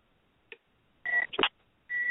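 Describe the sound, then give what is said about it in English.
Electronic telephone tones of an incoming call on a live on-air call-in line: a short blip, then a steady beep with a burst of mixed tones, and another sustained beep starting near the end, like a call connecting on the line. “Oh, we have a caller.”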